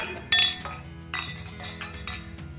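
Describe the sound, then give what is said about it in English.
Two bright clinks of wine glasses in a toast, a sharp one near the start and a softer one about a second later, their tones lingering briefly over faint background noise. “This one I'm on my second glass of, and I have no regrets about that. Cheers. Cheers.”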